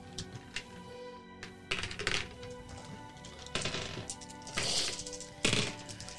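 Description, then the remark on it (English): Dice clatter and tumble across a hard table in several short, sharp bursts, rolled for a wits and awareness check in a tabletop game, with quieter gaps between rolls and a faint hum underneath. “Use your dice wisely.”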